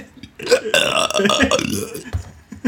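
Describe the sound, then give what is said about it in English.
A loud, drawn-out burp, rumbling and gurgling for well over a second, then a brief lower grunt-like gulp trailing after it. “Yeah, but I didn't burp twice uncontrollably.”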